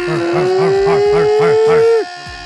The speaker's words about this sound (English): Oh, you hear that barking? You hear that howling? Oh, who is it? Who is it?